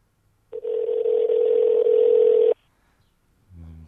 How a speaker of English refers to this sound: So we thought we'd try out our phone technology and have him call in. Hello? Okay, it's ringing. Here we go.